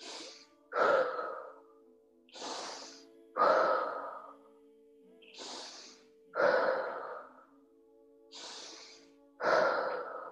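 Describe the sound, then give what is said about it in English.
Forceful, rhythmic breathing during a breathing exercise: four full cycles, each a sharp inhale through the nose followed by a heavier, rushing exhale through the mouth, with no talking. “Still breathing in through the nose and out through the mouth, but with a little bit more intensity.”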